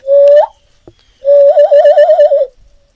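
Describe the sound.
A person whistles imitation bird calls: a short rising whistle, a pause, then a longer warbling, trilled whistle with a steady wavering pitch. Fairly loud, with no talking.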